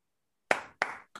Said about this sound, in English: Round of applause for the young man. To have the awareness.